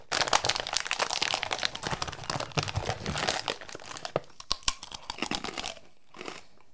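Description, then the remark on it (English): Dense crinkling of a plastic packet of pork scratchings for about four seconds, then a few sharp crunches as a hard, double-cooked pork scratching nugget is bitten and chewed, fading to quiet. “Deliciously double-cooked nuggets with a lovely crunch that avoids the traditional style hardness.”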